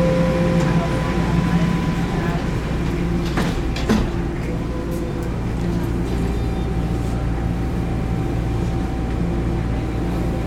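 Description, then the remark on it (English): Subway train doors slide shut at a station with a brief clunk partway through, set against the steady low rumble and hum of the train carriage. “Please stand clear of the doors.”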